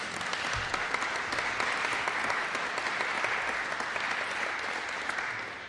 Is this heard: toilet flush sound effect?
no